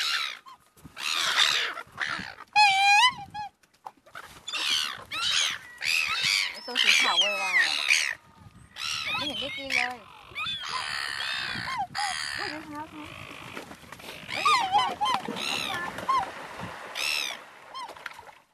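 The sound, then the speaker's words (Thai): A noisy flock of waterbirds, including ducks, geese, swans and gulls, at a lakeside in the morning as they are fed bread scraps, calls nonstop, with overlapping honks, quacks and squawks layered into a dense, chattering din that barely pauses. “อันนี้เสียงจากเช้าอีกวันหนึ่งฮะที่เราตื่นมาริมทะเลสาบแล้วก็เจอฝูงนกน้ำมากมายนะครับทั้งไม่รู้จะเรียกอะไรทั้งเป็ดทั้งห่านทั้งหงนกนางนวลอะไรมาแบบสารพัดนะครับก็เลยเก็บรวบรวมเศษขนมปังอะไรต่างๆนะไปให้อาหารมันกันฮะ”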